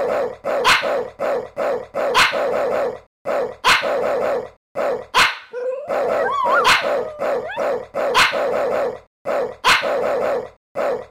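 A dog barks in a steady, rhythmic pattern like a looped beat, with a high, wavering dog whine rising briefly in the middle; loud, with no talking.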